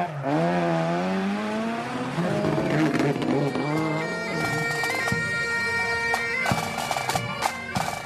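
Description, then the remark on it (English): A rally car drives past in Fermoy, North Cork, Ireland, during a rally weekend; its engine roars and revs hard, pitch climbing then holding in a loud sustained whine, with sharp gear changes and crackles toward the end, with no voices. “Still, the sound of a cloth squeaking on a windscreen is not the sound you'd expect to hear in rallying in Ireland. This is more of what you'd expect.”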